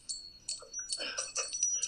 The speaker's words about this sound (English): So, like, I took 50 cal brass and made wind chimes out of them.